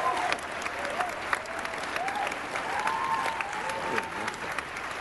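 audience applause

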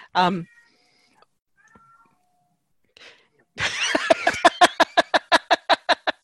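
cat meowing

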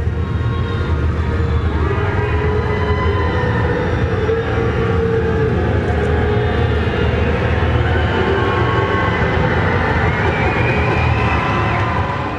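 crowd cheering and booing

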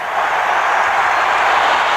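stadium crowd cheering

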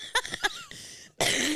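cough

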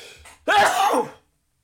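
loud human sneeze

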